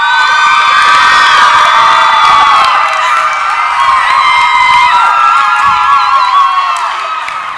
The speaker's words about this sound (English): And everyone kept telling me I looked like a superstar, and now I really feel like one because of all the applause. It's really great.